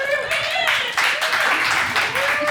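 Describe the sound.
A studio audience bursts into steady applause mixed with laughter, a dense, continuous wash of clapping and crowd voices that holds loud for a couple of seconds.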